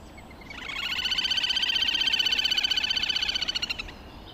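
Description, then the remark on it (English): A bird's daytime call during the dawn chorus: one sustained, rapid high-pitched trill, clear, rising slightly in loudness and running for about three seconds before stopping abruptly, with no talking. “Okay, well, let's have a listen to it in the daytime, the one that we're most familiar with, the one I'm certainly most familiar with, at the dawn chorus.”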